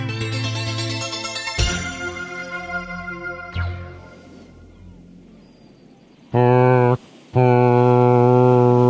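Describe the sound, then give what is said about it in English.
Synthetic ship horns from an ad spot for an 80s cruise sound in deep, sustained tones, broken by sharp hits and a hissing wash of fake water sounds, then two loud, steady horn blasts close it out with a brief gap between them. “Do you mean the ship horns and the fake water sounds?”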